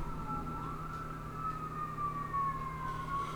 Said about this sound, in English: and basically, the sirens are going off.